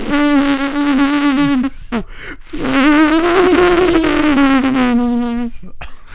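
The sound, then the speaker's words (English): Two long buzzing fart-like raspberry noises made from a belly button, the first about two seconds and the second about three, with a steady droning pitch that wavers slightly like an insect's hum. “It's not even a butthole fart. My it's a stomach button. Fart. It's a belly button fart.”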